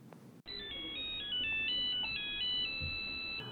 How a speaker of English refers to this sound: For the first time with the Nokia, we had a ringtone that did not sound like a phone. Let's hear that one.